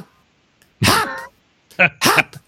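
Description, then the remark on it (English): A person imitates the barking of Linus, a sweet little dog kept in a kennel upstairs: three sharp, yappy vocal barks, one longer then two quick ones close together, loud, with no other talking. “A sweet little dog, but they keep him in a kennel literally right over my head where I worked all day. And he would do this.”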